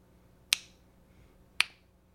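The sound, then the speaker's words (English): A clock ticks at a steady pace, two crisp, sharp clicks about a second apart, each with a brief bright ring-off, heard alone with no voices. “Our clock has sped up, and then it seems to find a steady rhythm.”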